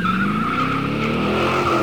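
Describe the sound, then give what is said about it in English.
Tires of a 1955 Chevy 210 two-door sedan skid with a loud, steady high-pitched squeal, lasting the whole two seconds, while its engine roars and rises underneath. Intense, with no voices. “Bob Falfa's 1955 Chevy. Wow. Wow, that's a car.”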